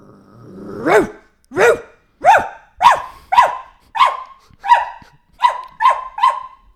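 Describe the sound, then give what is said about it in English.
A woman imitates a dog barking: about ten loud barks in a steady, even rhythm, each a sharp rising-then-falling yelp, with no other voices. “Doing her impression of a dog.”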